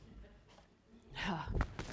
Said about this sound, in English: How do we, as a church, let me blow my nose.